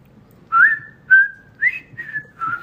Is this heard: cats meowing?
no